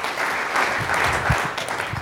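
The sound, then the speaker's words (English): An audience applauds the panelists at a discussion on church unity: a dense, steady wash of many hands clapping at an even, sustained level, with no voices standing out. “Again, let's give a good hand clap to our panelists.”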